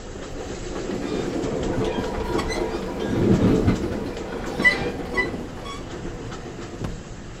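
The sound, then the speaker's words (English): A passenger train rolls steadily along the rails with a continuous low rumble, rhythmic clickety-clack of wheels over joints, and a few sharper metallic clacks near the middle; no voices. “Well, these days on this train, there's more clicking of laptop computers and cell phones ringing.”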